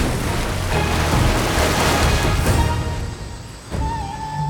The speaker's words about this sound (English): There was a loud splash as the monster leapt back into the river.